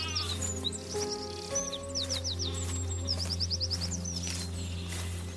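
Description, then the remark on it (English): Outdoor ambience on a bright sunny day, arriving at a house, with a steady low wind rumble, sheep bleating nearby, and birds chirping in quick repeated trills high above, all blending together at moderate volume with no one talking. “And as we arrived, we could hear the wind, the nearby sheep, and the birds chirping.”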